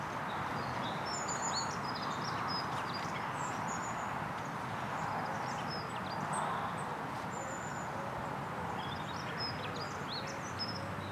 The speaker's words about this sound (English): Yeah, something hammering on the dead wood.